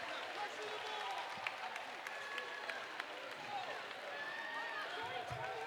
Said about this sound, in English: You hear the crowd.